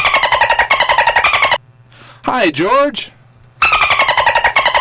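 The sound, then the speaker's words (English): A man on the phone imitates Pacific white-sided dolphin sounds: loud buzzing click trains, then a brief burst of high squealing chirps that sweep up and down, then more rapid buzzing. Someone briefly speaks a greeting. “Yes, and while he was at SUDS, he became fluent in Pacific white-sided dolphin. So when I need a dolphin sound, I talk to him on the phone.”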